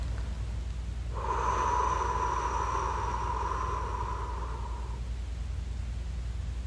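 A single deep, drawn-out breath during a breathing exercise lasts about four seconds, a steady airy rush with a faint whistling edge, fairly loud against quiet low background hum, with no talking.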